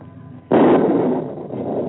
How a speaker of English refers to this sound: Is the thunder really thy voice?